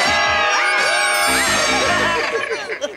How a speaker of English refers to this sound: Yeah! Good screaming, everybody.